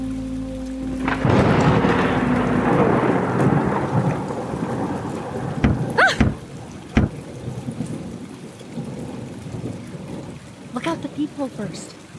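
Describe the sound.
Heavy, steady rain pours down after a second of quiet, with a deep thunder rumble beneath it, a few sharp thumps, and brief voices breaking through near the middle and end.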